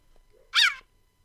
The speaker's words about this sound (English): A cheetah. Correct. A cheetah. It had to be a cheetah. Chirping is the most common way cheetahs vocalize. The sound may be a sign of stress or a way to attract mates.